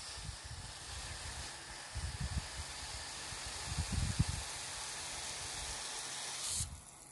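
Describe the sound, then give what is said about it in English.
A leaking garden hose sprays water in a steady hiss, with soft low bumps and rustling mixed in; the spray cuts off abruptly near the end. “This hose is just spraying water like there's no tomorrow.”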